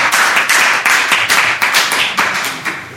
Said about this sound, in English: Thank you. Thank you. Round of applause. Thank you.